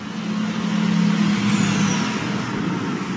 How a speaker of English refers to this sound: Outside, we walk along a pavement by a busy road.